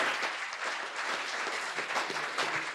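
A crowd at an evening gathering applauds steadily as attendees are introduced, a dense, even wash of many hands clapping at a moderate level that holds without a break for the whole few seconds.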